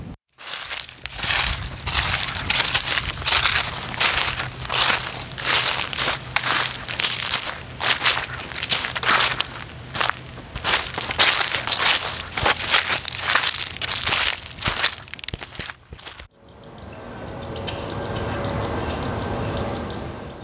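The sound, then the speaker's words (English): Steady footsteps crunch through dry fallen leaves in a forest near a cottage in Quebec, in crisp air, a brisk rhythmic rustle that stops near the end, leaving faint bird chirps over a quiet outdoor ambience. “When we arrive, we put our things inside and then begin our trip with a walk through the nearby forest, where the leaves have all fallen to the ground from the crisp air.”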